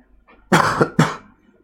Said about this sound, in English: Excuse me if I have to cough, I think.